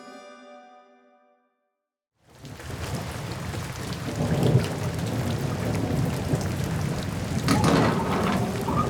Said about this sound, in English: Good God, it's positively hammering down outside. Lightning, thunder, the whole shebang, my good man.